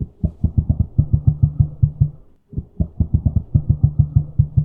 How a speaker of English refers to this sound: And I found this sample of an emu doing something called booming. And it's a really interesting sound. And I added it in. And this is what it sounds like.